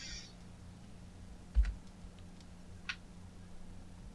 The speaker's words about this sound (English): Sorry, I was... typing stuff.